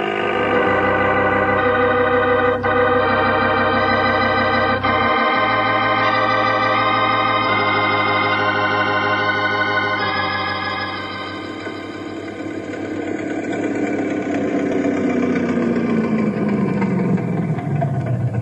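A speedboat engine roars loudly and steadily, its pitch climbing in steps before sweeping downward as it passes by and pulls away, with no voices heard.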